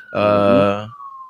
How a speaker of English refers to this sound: Of course, you hear the sirens in the background.